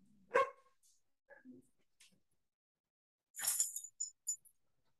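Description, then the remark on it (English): A single sharp bark from the dog Brownie, set off by a man cutting the grass outside, rings out, followed by a few soft thuds, then a bright noisy burst and two short metallic clinks toward the end. No one speaks. “You missed it, but my dog was my dog Brownie was jumping on my lap because the man's cutting the grass outside.”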